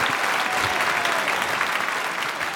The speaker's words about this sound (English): So you need as much of a round of applause as those children do. That's a fact.